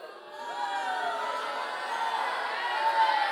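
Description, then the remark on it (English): An audience boos steadily for a few seconds when asked who supports the Patriots, a dense, sustained wash of many low, drawn-out voices that swells slightly toward the end, with no speech on top. “Did I say anything about booing?”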